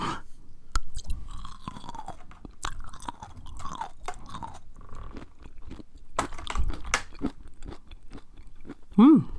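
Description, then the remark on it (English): Wet chewing of caper berries with repeated crunchy bites and mouth sounds in an irregular rhythm, ending with a brief rising vocal hum. “I'm going to eat one more because I like them.”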